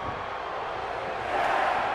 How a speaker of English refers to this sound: Let me turn up the crowd.